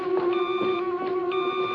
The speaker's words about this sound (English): And we need to pick up the hotline because it is ringing.